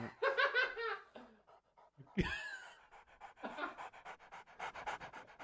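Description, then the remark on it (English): A person imitates a dog panting with quick, rhythmic breathy huffs, fairly loud, after a brief vocal burst and a sharp noisy gasp. “Do you want me to be the dog? Yeah, the dog's looking over.”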